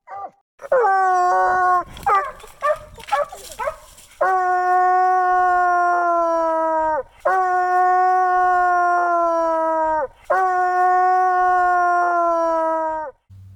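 A tree hound bays in a few quick, choppy yelps, then lets out three long, sustained howls with short pauses between them, loud, with no talking.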